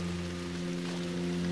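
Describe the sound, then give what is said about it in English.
Steady, dense hiss of heavy rain from powerful storms pouring without a break under a nearly black afternoon sky, layered over a constant low mechanical drone with a faint hum. No voices. “The Hope's landing has been complicated by powerful storms over the region.”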